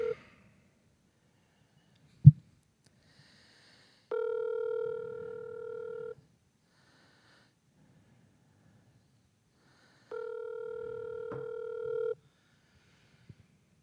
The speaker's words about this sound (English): I'm playing phone tag with my dad, so I think I missed a call. I'm gonna call him back. This should be interesting.